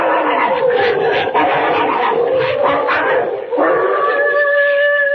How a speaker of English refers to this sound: What's that? Oh, it's them dogs. They're fighting again. Lend a hand now, quick, before they chew each other to bits.